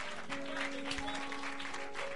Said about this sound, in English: If you are clapping, I want you to clap and clap better.